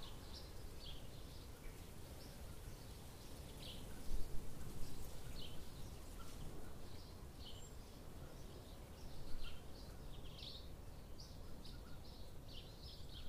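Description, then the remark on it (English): Birds sing outdoors in Scotland on a sunny day in quick, high chirps repeating throughout, fairly faint, over a steady low rumble of wind or ambient noise. “Seemingly not yet exhausted from the pre-theatre performance, the birds continued to sing wherever we went.”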